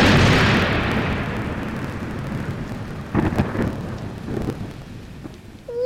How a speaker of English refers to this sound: Dad, did you see that? Lightning just hit the thing on your table. Whoa, that was bright.